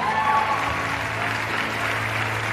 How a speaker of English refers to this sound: Oh, come on. You can at least support this individual that's clapping.